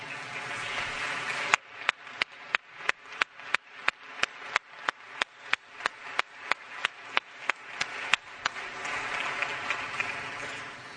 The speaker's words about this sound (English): And in reality, it's still Father's Day because we didn't get to celebrate it last week. So everybody who's a dad, a father, would you stand up and we could just give you a round of applause?